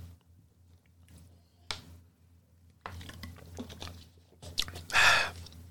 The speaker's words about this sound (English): Let me get my last water break because I'm gonna need it.